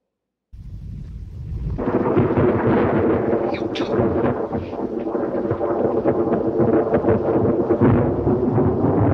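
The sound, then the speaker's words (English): Loud, dense rumbling thunder from a film's creation scene starts with a low roll, then swells into a sustained crackling roar. Sharp, harsh metallic clangs are scattered through it, with no voices. “As a fair warning to headphone users, there's a lot of lightning and clanging noises, and it's a little loud.”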